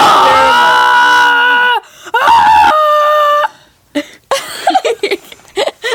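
A loud, strained human scream of agony, wavering and breaking into several drawn-out wails and choked gasps, performed with no other sounds around it.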